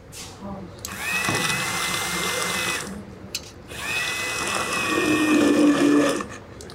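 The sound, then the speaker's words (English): A handheld blender whirs in two steady bursts, each a few seconds long with a brief pause between, its motor droning loudly with a slightly wavering pitch as it purees cooked-down fava beans and fully softened yellow split peas. “Once the fava beans had cooked down and the yellow split peas were fully softened, it was time to finish the dish with a handheld blender.”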